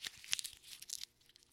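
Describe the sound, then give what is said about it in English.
A small piece of sticky-note paper with a name written on it being crumpled, a quick run of soft, irregular crinkles and crackles lasting a second or so, with no voices. “I'm going to take the post-it note here with Lana's name on it. I'm going to crumple it up.”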